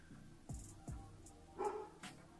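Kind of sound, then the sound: animal, dog barking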